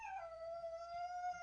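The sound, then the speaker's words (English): A cat yowl sound effect played from a soundboard: a single drawn-out yowl holds a steady, nasal pitch for about a second and a half after a brief dip at the start, with no talking. “That is hands down the worst cat noise I've ever heard.”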